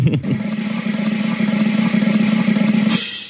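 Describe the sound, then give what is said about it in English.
A rapid, steady drum roll rattles on for about three seconds, loud, then cuts off abruptly. No voices are heard over it. “The drum roll, Charles Ratner will give us the answer, then I'm going to throw a sharp object across the room.”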